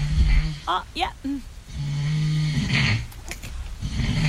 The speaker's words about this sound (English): I actually think that we've got audio of you at the exact moment. No, we don't. That is that snoring.